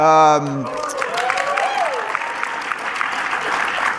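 An audience breaks into steady, dense applause for Tulsi Gabbard after a brief spoken word, the clapping holding at an even level throughout with a few cheers and whoops rising above it.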